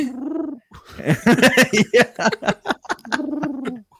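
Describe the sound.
A person imitates a pigeon, opening and closing with low, wavering coos, and in between a quick run of throaty, breathy clucking sounds. Fairly loud and alone, with no talking.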